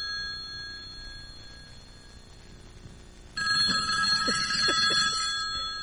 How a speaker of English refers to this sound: Hang on, some mic. Can you fucking just... Is that my phone or yours?